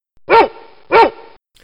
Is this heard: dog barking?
yes